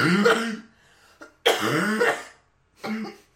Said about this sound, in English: Okay, let me just cough first.